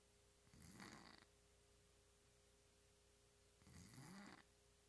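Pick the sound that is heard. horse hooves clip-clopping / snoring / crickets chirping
snoring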